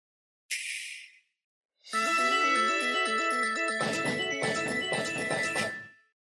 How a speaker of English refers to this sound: Did you blow your nose? Yes.